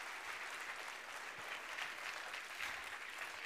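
A group claps steadily in a dense, even round of applause, a sustained wash of many overlapping hand claps at moderate loudness with no voices standing out.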